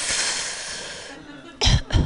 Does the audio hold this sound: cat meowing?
no